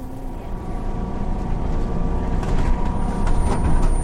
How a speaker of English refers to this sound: Most days I commute to work by bus. It's quick and easy.